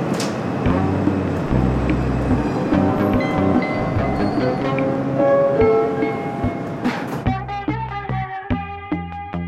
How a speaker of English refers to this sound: It is Friday, January 28th, 2022, and I'm about to get on the subway for the first time in 2 years. Stand clear of the closing doors, please.